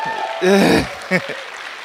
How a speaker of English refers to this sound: If you're thankful to God for the rain this morning, please give the Lord a round of applause.